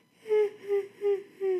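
yawn

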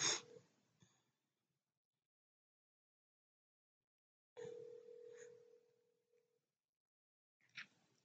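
phone call ringing tone

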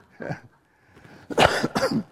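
cough

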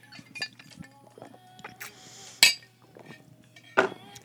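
sipping water

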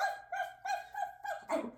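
dog barking

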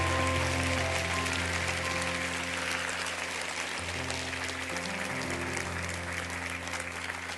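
audience applauding

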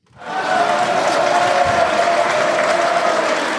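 applause

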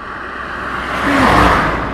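race car driving past

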